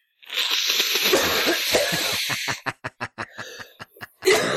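Someone blows their nose: a long, wet, honking blast followed by a quick series of short snorts and sniffs, ending with one more brief blow.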